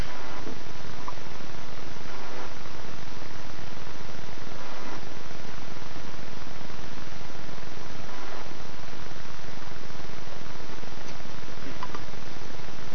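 A loud, steady electronic buzz caused by interference from a USB device drones without a break, a dense helicopter-like whir of interference noise that fills the whole stretch. No one speaks over it.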